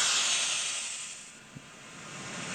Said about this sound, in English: Better. That's brown. What we have right now. We have brown noise.